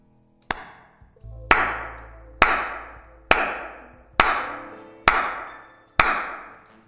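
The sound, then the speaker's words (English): Seven slow, evenly spaced sarcastic hand claps ring out one by one, each sharp crack trailing off into a long echo off the walls of a facility. No one speaks. “Sarcastic and drawn-out slow claps splash off the walls of the facility”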